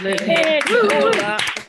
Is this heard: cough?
no